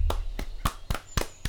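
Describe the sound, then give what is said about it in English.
Six steady hand claps in an even rhythm, each a sharp, crisp smack, set over a low rumbling background with no voices, during an outdoor improv show in a park. “Wait, who is that clapping?”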